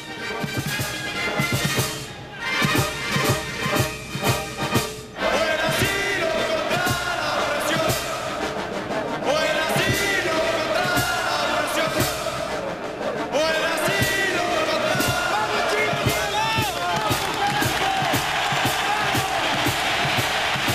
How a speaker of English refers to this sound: For applause like that, that's a solid ending. It's a spine tingler, isn't it? Yeah, absolutely lovely.